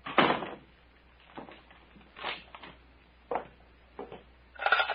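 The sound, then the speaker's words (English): A cabin door is shut and locked: a firm thud, then a series of short wooden knocks and clicks spaced unevenly over a few seconds. “And, Doctor, lock the cabin door.”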